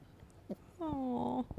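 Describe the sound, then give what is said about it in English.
A newly acquired female dog lets out a single short whine, a thin, steady tonal whimper lasting about half a second that dips slightly at the end, fairly quiet with otherwise still surroundings. “She just made a tiny noise.”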